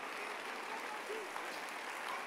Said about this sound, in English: Clap your hands, clap your hands, clap your hands.